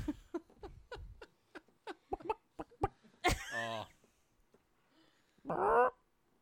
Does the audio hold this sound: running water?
no